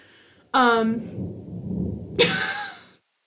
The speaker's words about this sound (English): That was perfect timing for thunder. If you guys can hear it, I'm sorry. There's magically going to be a thunderstorm that I didn't know was in the forecast.